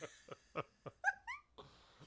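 A dog gives a few short, breathy huffs, then lets out a high, wavering whimper that rises and trails off, fading into quiet background noise.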